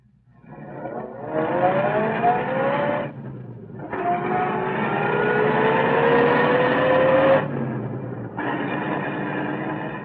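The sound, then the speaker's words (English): Captain Mercer's car engine starts up and pulls away, its pitch climbing as it accelerates through several gear changes, loud, with no voices. “Anyway, pretty soon, Captain Mercer came down and we got into his car.”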